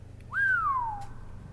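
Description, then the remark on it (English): A single whistled note rises briefly and then glides slowly downward, ringing with a noticeable echoey room tail as it fades, over a low steady background hum. “There's a lot of reverb on that whistle.”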